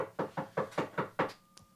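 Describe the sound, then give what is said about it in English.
A rapid series of six firm knocks on a door, evenly spaced and fairly loud, followed by a brief quiet with a faint tap at the end. “I don't know how they're knocking outside.”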